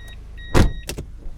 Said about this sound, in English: Sorry. I'm having an awkward time parking my car this morning. Excuse me.